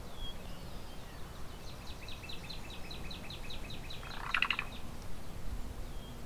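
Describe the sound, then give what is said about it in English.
A cuckoo a few feet away, preening, calls every few seconds outdoors: a quick run of high, repeated chirping notes ending in a sharper burst, fairly faint over a steady background hiss. “And it makes that call every few seconds while it's preening.”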